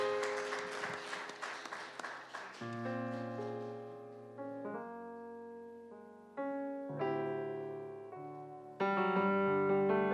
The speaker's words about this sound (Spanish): Dale fuerte palmas al Señor, amén, aleluya. Pero fuerte, fuerte, fuerte con todo tu corazón, aleluya.